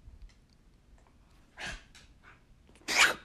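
A dog gives a few short, breathy huffs and snorts while a person wrestles with it, with one louder burst near the end and quiet pauses between. No one speaks.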